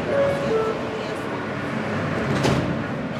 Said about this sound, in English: So I went on the train